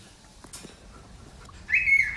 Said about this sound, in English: That's our birds. We have two cockatiels. We recently got a new one, Allie and Willie.